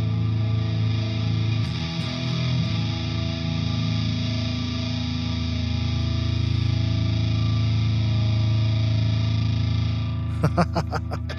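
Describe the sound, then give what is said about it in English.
An electric guitar played through a distortion pedal holds one thick, buzzing chord for about ten seconds, then a few sharp choppy strums cut in at the end. No one speaks. “Yeah, those are different pedals from each other.”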